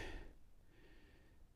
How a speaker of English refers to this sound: "Mister," she said with a big yawn,